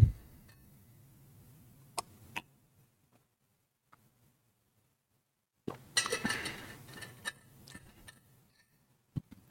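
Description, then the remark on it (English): Sharp glassy clinks and taps while someone gets some water, a couple near the start, then a busier cluster of clattering clinks with a low rumble, like a glass being handled and set down, with pauses of near silence between. “Let me get some water.”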